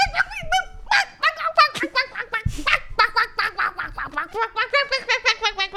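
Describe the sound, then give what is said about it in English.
A voice imitates a hurt chicken with shrill, wavering squawks, then breaks into a fast run of rhythmic, high-pitched clucking bursts that grow steadily more regular toward the end. “A chicken that got hurt would sound like.”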